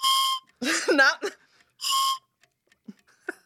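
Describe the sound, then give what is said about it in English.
Two short, steady whistled notes ring out clearly, separated by a brief spoken word, followed by a few faint clicks and quiet background noise. “It's gone back to the whistle.”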